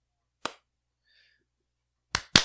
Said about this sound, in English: All right. Better give me a heavy clap. Claps all around.